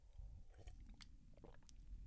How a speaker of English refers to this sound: I'm going to take a sip of water because I think my mouth sounds a little smacky, and that's going to be irritating to me and you.